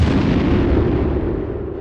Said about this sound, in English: The engine temperature rose again when climbing through 10,000 feet, then suddenly, the engine exploded.